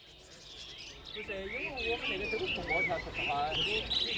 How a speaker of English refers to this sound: Down the street, there are row upon row of caged birds for sale in this Chongqing park.